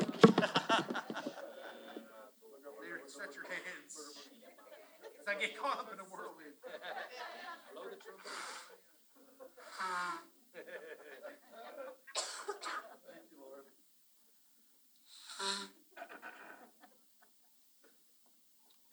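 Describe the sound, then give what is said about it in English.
Several short, breathy bursts of someone blowing their nose, with a cough or throat-clear mixed in, over steady murmuring voices praying in tongues that fade into near silence toward the end. “Pray in tongues while I blow my nose.”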